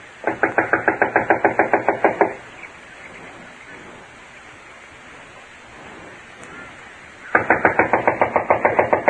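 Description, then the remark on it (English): Rapid, steady knocking on a wooden door of a run-down, unoccupied house in two bursts, about a dozen raps each, separated by several seconds of soft hissy background noise. The knocks are loud. “I'll knock.”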